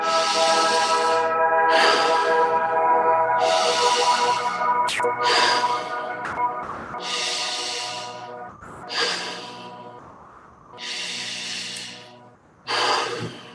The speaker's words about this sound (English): And then we'll start with our first breath, nice and deep into the stomach. And just let go. And again.